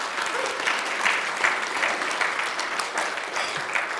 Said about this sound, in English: So we all look forward to, well, yeah, let's clap for that one.